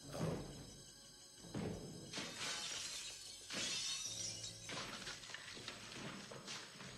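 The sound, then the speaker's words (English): A stunt performer crashes through a door in a stunt fall, setting off loud glass shattering, with several sharp breaking bursts followed by a long, bright tinkling spray of falling shards. Low thuds sit beneath it, and no one speaks. “The obvious moments, like, so he's about to crash through the door here.”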